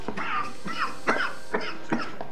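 A string of four or five short, raspy coughs and throat-clearing sounds coming in quick succession at a fairly even pace with no talking.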